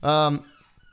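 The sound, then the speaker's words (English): A single loud bark from Darby, a female dog, short and sharp with a brief echo trailing off into quiet. “It's your dog.”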